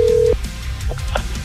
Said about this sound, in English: But if it's you, hopefully your phone starts ringing right now. Listen for it. Is it vibrating? Is it ringing? Pick it up.